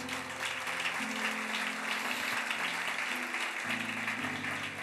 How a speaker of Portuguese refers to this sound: Aplauda Jesus por isso.